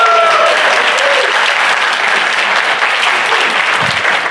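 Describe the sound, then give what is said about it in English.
Loud, steady applause from a group fills the whole stretch, a dense wash of many hands clapping at once with no pauses, energetic throughout. “Big round of applause”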